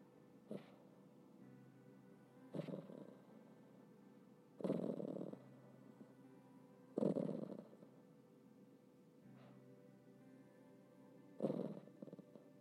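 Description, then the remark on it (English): A dog growls softly in its sleep while dreaming: low, rumbling grumbles arrive in short bursts every two seconds or so, with quiet breathing between them and no talking. “Because she never growls in her waking life, so I don't even have any idea what she would growl at.”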